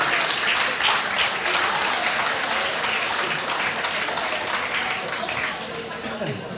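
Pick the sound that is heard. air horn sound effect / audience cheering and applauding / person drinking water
audience cheering and applauding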